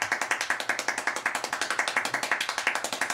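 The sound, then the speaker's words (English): Extremely fast hand clapping, a steady stream of sharp, bright claps at about 14 claps per second, keeping an even rhythm with no voices over it. “14 claps per second.”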